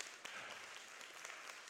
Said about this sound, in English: Go ahead, clap. That's worth it.